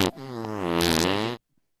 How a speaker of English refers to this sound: Yeah, this is a big fart